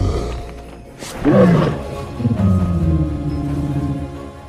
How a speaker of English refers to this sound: In How to Train Your Dragon, the sounds of tigers, horses, and elephants were all used for the dragon named Toothless.